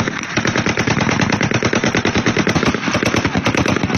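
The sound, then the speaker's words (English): Rapid, continuous bursts of automatic gunfire in Jubaland, heard in neighboring Mandera county, Kenya, crackle loudly for several seconds, shots packed tightly in a staccato rhythm with no voices. “Let us now cross into Jubaland, where staccato bursts of gunfire has been heard in neighboring Kenya's Mandera county.”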